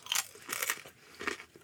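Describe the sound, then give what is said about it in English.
Someone bites into a crunchy snack seasoned with cayenne pepper and chews, giving a few bursts of crisp, crackly crunching in an uneven rhythm, fairly quiet, with no talking. “Eat one more of these before I start cutting this onion.”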